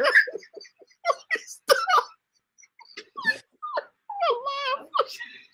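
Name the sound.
dog whimpering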